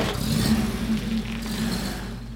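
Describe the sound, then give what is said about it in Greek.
A car engine idles and revs steadily while being warmed up, a low droning rumble with harmonic tones that rise and fall slightly over a couple of seconds, then eases off. No one speaks. “Μια στιγμή να ζεστάνω το αμάξι.”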